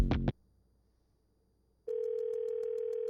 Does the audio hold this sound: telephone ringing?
yes